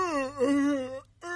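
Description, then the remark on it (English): A voice fakes a yawn as a hint to a visitor that it's time to go: a drawn-out, breathy vowel that slides downward in pitch, breaks off briefly, then trails into a short final groan. Moderately loud and alone, with no talk over it. “I start to yawn and I say, well, thanks for coming over.”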